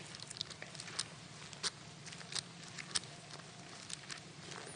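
Many Bible pages flip and rustle at once as people turn to Ecclesiastes 2:13, a quiet, irregular patter of crisp, papery swishes and flicks overlapping one another, with no one speaking.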